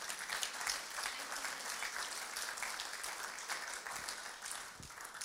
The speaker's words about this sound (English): Awesome. Give him a big clap.